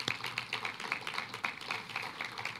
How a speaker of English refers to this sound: We are honored to be part of this milestone celebration and grateful to the St. Luke's team and the Resident Advancement Committee for all of their collaboration on tonight's forum. Round of applause for the RAC.